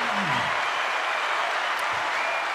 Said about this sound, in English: You know, this crowd, they're just so generous. I know. What's so interesting is that we have different people in here all the time. Yeah. And the length of the applause is the same.